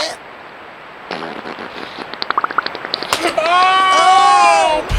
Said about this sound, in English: I don't like that beaver farting.